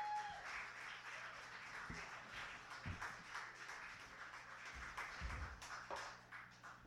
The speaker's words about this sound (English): All right, hey, let's hear some more applause for